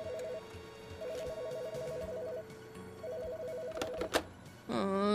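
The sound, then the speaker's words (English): A telephone rings with a fast warbling trill in repeated bursts, clear over a busy background hum, ending with a burst of brighter electronic tones. “Let's go before he calls back.”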